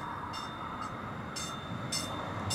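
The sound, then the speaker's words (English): A light rail train pulls in in Denver, not far from a homeless camp, with a steady rumble, a thin high whine running through it and short bursts of hiss recurring every half second or so. No one speaks. “Not far from the camp, a light rail train is pulling in.”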